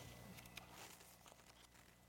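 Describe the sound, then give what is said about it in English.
Soft, irregular crinkling and rustling of paper as the speaker searches for his notes during a Bible reading, a few quick crackly bursts scattered over a couple of seconds, quiet, with no one talking. “Let me find my paper here.”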